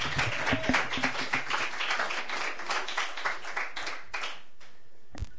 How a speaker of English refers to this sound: Clap to the stage.